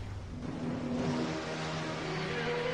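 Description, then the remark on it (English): A motorboat engine drones loud, its steady roar with a shifting whine suggesting the boat is pulling up; no one speaks over it. “Where did you get that boat?”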